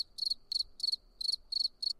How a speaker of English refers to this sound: Okay. Crickets.